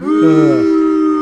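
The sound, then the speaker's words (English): A single voice lets out a long, low, drawn-out "boo," imitating a booing crowd reacting to a joke. It is steady and fairly loud, with a slight dip in pitch partway through, and lasts just over a second. “Boo. I need my soundboard for the boo sound effects.”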